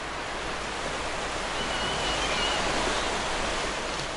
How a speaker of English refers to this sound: Here's a little bit of vibing right now with this ocean sound.